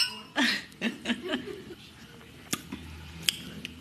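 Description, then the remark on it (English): Soft chuckling, then two sharp, bright clinks a moment apart as drinks are tapped together in a toast, with a faint ringing tail on the second. “Okay, cheers.”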